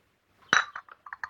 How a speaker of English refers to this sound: It's only the front doorbell. Go and answer it.